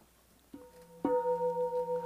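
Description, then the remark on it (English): A bell is struck twice, a soft tap and then a louder strike, leaving a sustained, clear ringing tone that pulses gently as it hangs in the air, with no one speaking. “Ring the bell, you know.”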